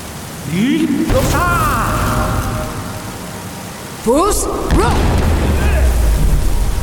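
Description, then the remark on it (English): A video game dragon shout blast, the "Foos Row" shout: a deep, bellowing voice launches a loud, roaring whoosh of force that knocks over a summoned target character, then a second shout bursts out a few seconds later over a steady rumble. “So once we get the third one, we can really knock things over, like blow things up, like over and stuff.”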